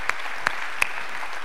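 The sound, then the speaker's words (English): An audience applauds and cheers for their pastor in a steady, dense wash of clapping, with a few sharper individual claps popping out above the crowd noise. “You can definitely cheer for him.”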